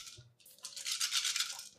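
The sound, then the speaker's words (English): Two six-sided dice rattle and clatter continuously for over a second, a dense scraping and clicking as they tumble across a hard surface in a game roll; the two highest dice land on fives, totaling 10. No one is speaking. “Two highest dice are 2 5s.”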